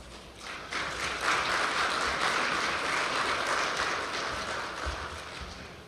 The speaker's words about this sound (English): I didn't think that needed a round of applause, but thank you.